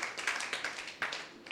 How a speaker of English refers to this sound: Come on, you can give God a clap. That's awesome.